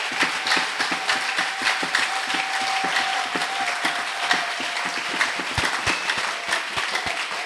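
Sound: audience clapping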